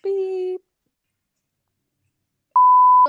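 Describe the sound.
A single loud, steady electronic beep lasting about half a second, following a short burst of voice and a pause, with a voice cutting in right as it ends.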